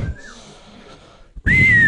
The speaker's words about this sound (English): I heard somebody whistle. That's funny.